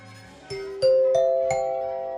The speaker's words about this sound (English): Honey, I think you should hit those bells again.